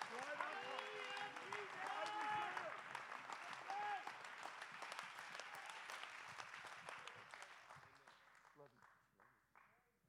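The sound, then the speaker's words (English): An audience claps hands in a dense burst of applause, mixed with cheering voices, then the clapping thins out and fades over the final seconds. “Let's go ahead and clap our hands.”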